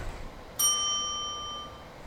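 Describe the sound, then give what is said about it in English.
A single bright bell strike rings out clearly, its clear metallic tone lingering and slowly fading over more than a second against a quiet background. “get your bell ready”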